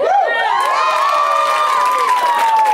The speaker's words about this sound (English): Thank you for applauding our American Express. It's really nice.